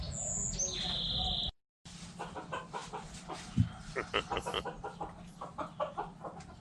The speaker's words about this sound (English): Can't believe they got commercials for clucking sound now. YouTube. It's the chickens in someone's backyard. and they're monetized.